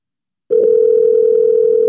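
After half a second of silence, a telephone line tone starts as someone places a call: a steady, unbroken mid-pitched hum that holds at an even, fairly loud level until the end, with no voices.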